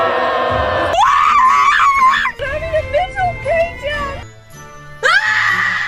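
Loud, anguished screaming from a few people, long wavering wails that rise and fall in overlapping bursts, close up, with a brief dip before a final shrill cry.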